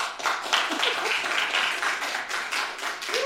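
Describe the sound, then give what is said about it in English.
An audience applauds a guest introduced as an astrophysicist, a steady wash of many hands clapping at once, dense and fairly loud throughout, with a few faint voices or cheers poking through the noise. “You're all clapping because you think she's that kind of doctor, but she's not.”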